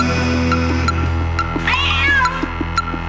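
A cat lets out a single drawn-out meow, rising then falling, fairly loud, over a steady low mechanical hum with a few faint clicks.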